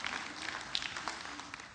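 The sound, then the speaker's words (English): An audience applauds steadily in thanks for a band, a dense wash of many hands clapping at a fairly even, moderate loudness throughout the short stretch, with no voices standing out. “Yeah, you can clap for that too.”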